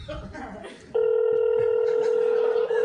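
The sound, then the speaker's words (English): A phone call placed to Chevy Chase: after a brief burst of muffled noise, a steady electronic ringing tone starts abruptly and holds loud and unbroken until the end. “Please pick up the phone. Oh, my phone's ringing.”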